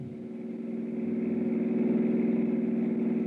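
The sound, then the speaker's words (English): A car engine roars steadily, its low rumbling drone swelling louder over a few seconds as it revs and suddenly pulls away from the back of a house, the driver in a hurry, with no voices present. “From where I stood, I couldn't identify the car that suddenly roared away from the back of the house, but one thing was obvious, the driver was in a hurry”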